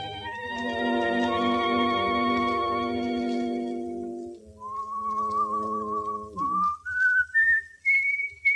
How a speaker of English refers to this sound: Can't he whistle any other song? He happens to like that song. He also happens to like the singer who uses it.